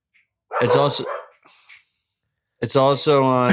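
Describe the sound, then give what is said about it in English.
Dogs barking excitedly as they greet everyone, in two loud, drawn-out bursts, separated by a brief quiet pause with a faint rustle. “I was trying to like mute it when the dogs were just greeting everyone.”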